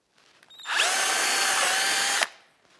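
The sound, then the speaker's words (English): An electric drill whirs up to full speed, holds a steady high-pitched whine for about a second and a half while boring a small hole in a plastic bottle cap, then cuts off and winds down. “You take the drilling machine and you make a small hole.”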